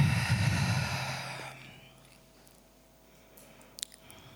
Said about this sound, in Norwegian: Så derfor tar vi litt tid nå, hvor du puster inn og ut.